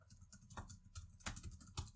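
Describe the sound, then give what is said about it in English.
Rapid, continuous typing on a computer keyboard, a dense flurry of key clicks with a few heavier strikes standing out, no voices. “Furious typing.”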